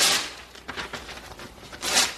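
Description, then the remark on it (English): A sheet of paper with a student's writing is torn apart by a teacher in front of a class in several quick, crisp rips, with a longer tear at the start and another near the end, fairly loud, with no voices. “You know, I can think of nothing that a kid can write on a piece of paper that gives a teacher the right to tear it up in front of them.”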